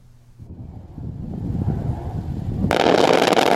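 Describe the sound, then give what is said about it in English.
A low, rumbling roar builds steadily, then a sudden loud crack of gunfire erupts and continues as harsh, sustained noise until the end, with no voices. Gunfire in a military mock battle during joint drills in Pingdong, with military vehicles and ammunition. “Various military vehicles and ammunition were incorporated into the drills in a mock battle as cross-strait tensions continue to mount.”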